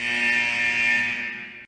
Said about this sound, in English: And that buzzer means that we are out of time for the first period